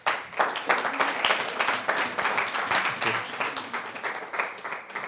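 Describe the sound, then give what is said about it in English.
An audience claps together to bless Jesus in sustained, dense applause, steady and fairly loud throughout, with a faint murmur of voices underneath. “Okay, let's just bless Jesus. With a clap if you can.”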